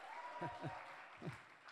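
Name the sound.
audience applauding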